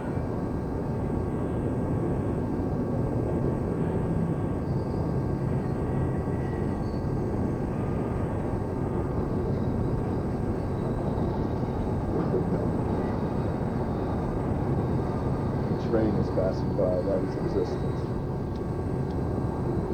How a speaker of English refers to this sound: A train is passing by.